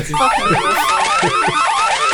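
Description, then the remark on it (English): A loud electronic game show buzzer sound effect, a harsh warbling tone that repeats in quick, even pulses for about two seconds, with no talking. “Another buzzer?”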